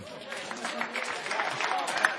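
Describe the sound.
An audience claps steadily for a couple of seconds, a dense patter of many hands at a moderate level, with some voices mixed into the noise.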